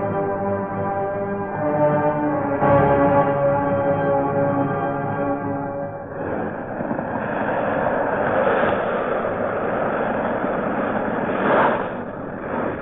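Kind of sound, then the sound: vehicle, airplane engine in flight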